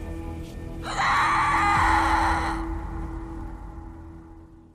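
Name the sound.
terrifying blood-curdling scream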